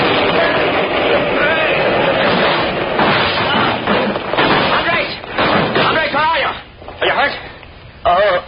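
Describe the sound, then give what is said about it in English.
A deafening explosion, set off by jerking a cord, blows up a wall of rock and cement that rises and topples. The loud, sustained blast gives way to crashing, rumbling debris for several seconds, and then voices start talking as the din fades toward the end. “There was a deafening explosion, and the whole wall rose up and toppled in upon them.”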